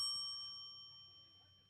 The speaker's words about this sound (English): So these bells, they're actually timed correctly, just in case you think these pitches are coming too fast.